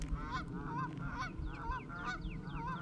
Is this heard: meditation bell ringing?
no